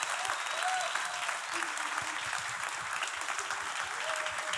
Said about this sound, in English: Yeah, can we just give a huge round of applause for these awesome folks for being here tonight?